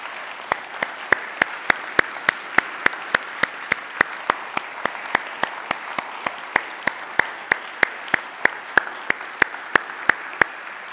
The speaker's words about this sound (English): So I'd like to ask all of our veterans, if you're here this morning, we want to honor you and thank you. So after they stand, let's give them a round of applause. If you're a veteran, would you please stand?